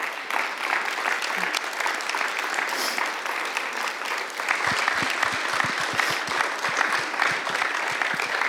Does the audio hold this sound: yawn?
no